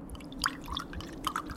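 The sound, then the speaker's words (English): Whiskey is poured into a glass, with a brief run of bright gurgling drips and plinks, fairly quiet, and no voices. “I switched off the television, finished my drink, poured another one.”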